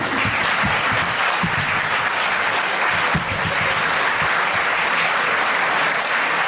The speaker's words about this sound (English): I think he deserves a round of applause.